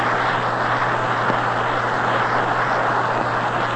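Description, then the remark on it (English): A large baseball stadium crowd applauds Bill Terry of the Giants in a steady, dense wash of clapping that holds at an even loudness throughout, with a faint low hum underneath and no voices. “Listen to that round of applause for Bill Terry.”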